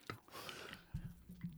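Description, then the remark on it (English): Soft chewing on a sticky Tootsie Roll candy, with a few irregular wet smacks and mouth sounds spread across a short, quiet stretch. No one speaks. “I'll chew on this Tootsie Roll.”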